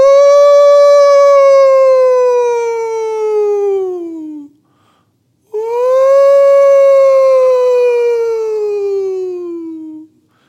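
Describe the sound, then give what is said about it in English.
A voice imitates the tornado sirens that sounded in the middle of the night throughout the town of Brooklyn Park, near Minneapolis. It makes two long, loud wailing howls, each gliding steadily downward in pitch, separated by a brief pause. “It was the middle of the night when all of a sudden tornado sirens started sounding throughout the town of Brooklyn Park.”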